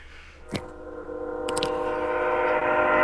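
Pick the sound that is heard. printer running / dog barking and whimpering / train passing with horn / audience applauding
train passing with horn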